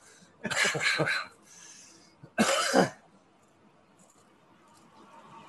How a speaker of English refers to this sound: Dang. I was all coughing.